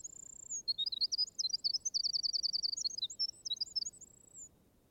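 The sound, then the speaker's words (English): A wren pours out a bright, rapid, gushing song of high trills and chirps, opening and closing with thin sustained whistles, heard clearly over a low background murmur. “You may know it is the song of a wren from its gushing lyrical character.”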